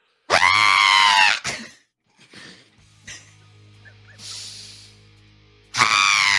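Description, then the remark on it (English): A person lets out two loud, shrill screeches in imitation, one at the start and one at the end, with quieter shuffling and a low hum in the pause between them. “I'm the only one that screeches.”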